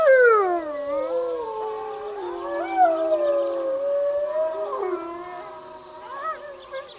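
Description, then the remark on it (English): Several wolves howl together in a layered chorus, long rising and falling wails overlapping and sliding in pitch, steady and fairly loud with no talking. “So from a distance, you can definitely see them, and it's really cool to see them and hear them howl in real life.”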